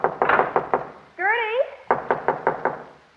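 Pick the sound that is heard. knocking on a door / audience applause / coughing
knocking on a door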